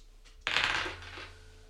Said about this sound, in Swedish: Vi ska slå en tärning också. Tack för det. Då ska vi se vilket nummer det blir.